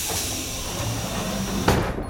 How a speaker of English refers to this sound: I'm out of here. Closing airlock chamber.